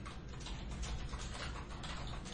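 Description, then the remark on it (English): Steady, rapid clicking of someone typing on a computer keyboard, continuous for a couple of seconds, with no voices. “You're going to hear typing, y'all.”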